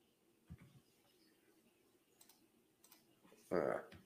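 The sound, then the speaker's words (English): Quiet, scattered clicks of computer keyboard keys, a few soft taps spaced irregularly, with a dull thump early on and a brief louder burst near the end. “Something's going on with my fucking keyboard.”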